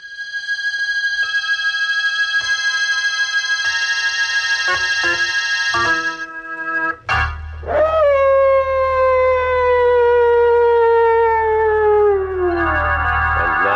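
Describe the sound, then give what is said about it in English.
Mad dogs howl in long, overlapping wails in a story set in darkest Africa. The howls are first held steady, then a loud howl rises sharply and slowly slides downward before fading into another drawn-out cry. No one speaks. “John Carradine isn't exactly soothing to your nerves, but put them together in a story set in darkest Africa with mad dogs howling in the background and, whew, well, find out for yourself.”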